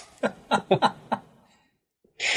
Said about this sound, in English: My cat just almost sneezed himself to death.